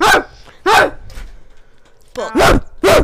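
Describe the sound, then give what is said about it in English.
A person barks like a dog, five loud bursts in an uneven rhythm with short gaps, two of them coming quickly back to back near the end. “Being a dog.”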